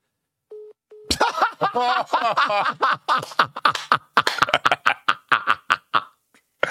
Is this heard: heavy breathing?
no